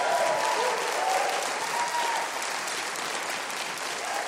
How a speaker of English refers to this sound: Welcome back. How about a little hand of applause for this great band over here